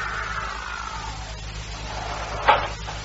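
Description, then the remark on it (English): A car pulls up and slows as it comes by to pick up passengers, its engine hum dropping in pitch against steady background noise, followed by a short bump near the end. “The car came by to drive Judge Whitney and myself to his apartment house.”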